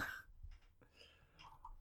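burp

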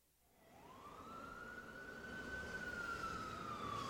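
fire engine siren

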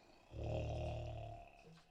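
snoring

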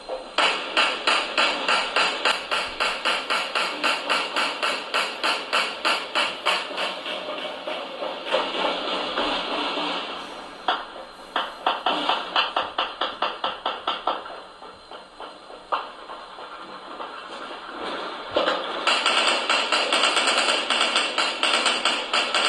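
gunshots

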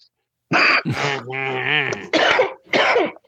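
cough

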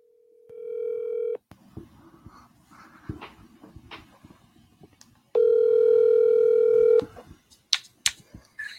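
telephone dialing and ringing

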